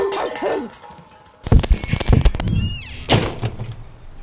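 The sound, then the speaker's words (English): A back door thuds shut with a heavy bang and rattling clatter, followed by a few more knocks and a second thump, after a brief high whine at the start, as a dog is brought in through it. “Dad brought the dog through the back door?”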